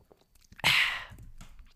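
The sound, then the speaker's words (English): A quick, close-up sip of a drink: one short, bright slurping rush that fades within half a second, followed by faint mouth and swallowing noises. No one speaks. “Quick sip.”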